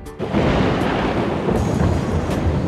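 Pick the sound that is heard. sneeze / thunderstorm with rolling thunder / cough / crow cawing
thunderstorm with rolling thunder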